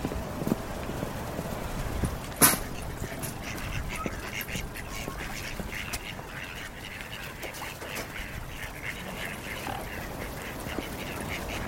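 A group of ducks quacks in a steady, overlapping chatter early in the morning, with a busy outdoor clatter underneath and one sharp knock early on.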